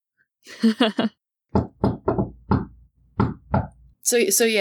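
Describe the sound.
A rhythmic knock on a door in the shave-and-a-haircut pattern: five quick raps, a pause, then two more, clear. Someone speaks briefly before the knocking and again right after.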